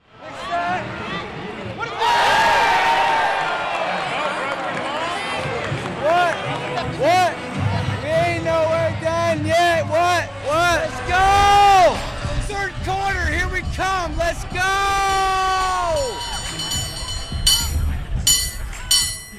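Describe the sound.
A man yells and cheers excitedly at close range, his voice rising and falling in long hollers over a steady background of crowd noise outdoors.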